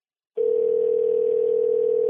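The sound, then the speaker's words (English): A steady telephone dial tone starts abruptly after a brief silence and holds at an even, moderate level without interruption, with no voices present. “Hold on, I'll call you on another phone.”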